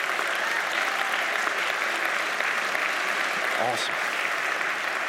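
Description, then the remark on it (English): Steady, dense audience applause fills the whole stretch, a continuous hiss of many hands clapping at an even loudness with no pauses, and a brief voice surfaces near the end. “Let's hold our applause to the end so we can welcome everybody together.”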